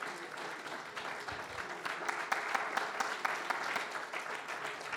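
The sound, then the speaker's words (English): An audience clapping their hands to the Lord in sustained, dense applause during worship, a steady wash of overlapping claps lasting throughout with no talking over it. “Come on, now clap your hands really to the Lord.”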